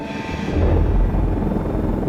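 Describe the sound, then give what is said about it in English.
A helicopter flying at night on autopilot, its steady low rotor thrum and engine roar filling the space continuously, loud with a slight swell partway through. “The night with Adam on the helicopter.”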